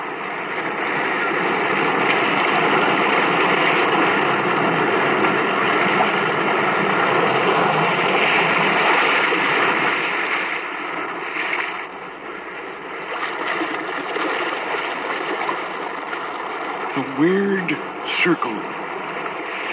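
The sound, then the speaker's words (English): Restless sea waves roar and wash in a loud, continuous rush that eases slightly about halfway through, with a brief wavering tone rising over the surf near the end. “Restless sea, we are met to call from out of the past stories, strange and weird.”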